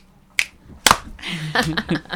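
Two sharp finger snaps ring out a half-second apart, followed by a brighter hand clap and a brief spill of overlapping claps and light rustle, all moderately loud, done by the hosts on the Folk You Radio show on CKTZ 89.5 FM.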